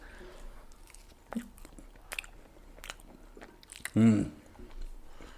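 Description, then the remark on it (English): Crisp crunches of someone biting and chewing tortilla chips covered in crema, corn and cotija cheese, a handful of sharp snaps spread irregularly, with a brief voiced murmur partway through and quiet room noise between bites. “Yeah, I mean, the chips should be crunchy, but since we got them a little while ago.”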